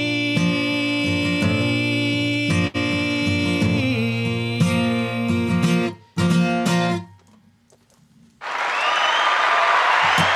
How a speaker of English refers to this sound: It's been so long since I've heard applause.